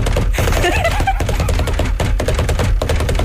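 Someone knocks a quick, steady rhythmic beat on a desk, a loud run of sharp hollow thumps repeating without a break.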